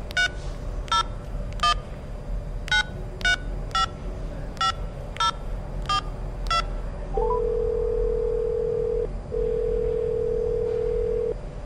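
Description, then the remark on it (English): Someone at a police station dials a telephone to make a phone call, about ten quick keypad tones beeping in an uneven rhythm, then a long steady line tone with one brief break. Clear, with no talking. “you get your phone call. Finally. Who are you gonna call?”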